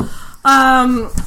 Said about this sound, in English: Oh, I got the bell. We've been leaving out the bell.